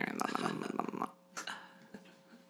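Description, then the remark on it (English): A voice imitates a stomach growl with a low, rumbling, gurgly vocal sound lasting about a second, fairly loud, followed by a few faint breathy noises. “Someone's stomach growled. It went.”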